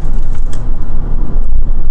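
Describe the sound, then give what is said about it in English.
Light metallic jangling and rattling from a car seat flipped upside down pops up now and then over the steady low rumble of a moving car's interior road noise, with no one talking. “I'm trying to figure out what's jangling.”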